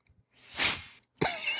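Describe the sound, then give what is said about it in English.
A voice imitates a girl's quiet fart with a breathy, hissing puff that swells and fades over about half a second, then a brief buzzy voiced sound follows after a short pause. “So this is like kind of like secret stuff, but girl farts actually sound like this.”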